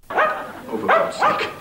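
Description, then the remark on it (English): A dog barks three times in quick succession, loud, each bark sharp with a slightly yelping, harmonic tone and short pauses between. “I asked you to keep that dog quiet, and instead you outfit him with a megaphone.”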